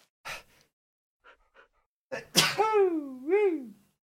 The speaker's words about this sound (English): Oop, I'm gonna sneeze.